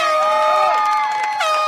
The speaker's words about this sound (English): He had this air horn he'd blow every time I scored a goal.